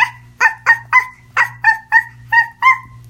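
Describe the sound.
A dog barks about ten times in a quick, steady series of sharp, fairly loud yips, with a low steady hum underneath and no talking.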